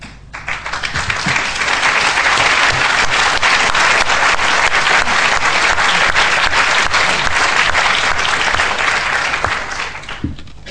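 A large crowd breaks into sustained applause, dense clapping that swells quickly, holds steady and loud for several seconds, then tapers off toward the end.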